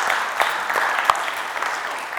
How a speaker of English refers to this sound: And so, man, give him a round of applause.